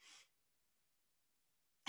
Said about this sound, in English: I'm pausing to cough. Hold on.